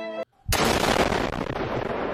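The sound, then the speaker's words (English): A brief musical tone cuts to a split second of silence, then a sudden, loud explosion bursts in, its harsh roaring rumble filling the rest of the moment without fading much. “What is that? Shot us. Loud explosion.”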